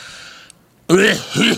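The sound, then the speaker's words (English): A faint breathy hiss fades to a brief silence, then one loud, harsh cough and throat-clearing sound erupts, rough and voiced, rising in a second strained push before ending. “Who was it that coughed like that? Me.”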